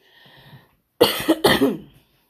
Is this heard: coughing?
yes